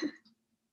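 A single quick sneeze, a short breathy burst that fades almost at once into near silence, with no talking around it.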